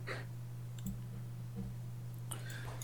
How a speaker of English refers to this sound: Where it's just like clicking and like. Yeah, it's like that.